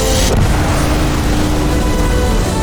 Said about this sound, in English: Prepare for departure. Graviton loop array is full. Check. Your space lane is clear. That's why we're here. Main engines go. Ignition.